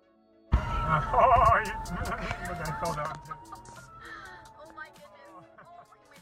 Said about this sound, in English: Just like these geese will act a fool.